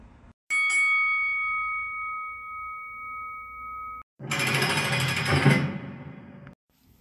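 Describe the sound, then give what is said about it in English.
A loud bell rings with a clear, sustained tone for a few seconds, then cuts off and is followed by a burst of harsh, rattling noise. No one speaks. “On that note, I'm going to ring the bell on this or that.”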